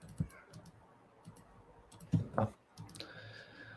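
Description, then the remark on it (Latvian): Someone types a link into a chat on a computer keyboard that is somewhat farther away, in an irregular, quiet patter of clicks, with a couple of heavier key thumps midway. No one speaks. “Man klaviatūra ir tālāk, un tad man...”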